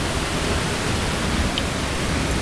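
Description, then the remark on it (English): A steady, dense roar of rushing water fills the air without pause, loud like a large waterfall pouring nonstop, with no voices or other sounds cutting through. “We are definitely approaching a waterfall of some sort because it is getting loud.”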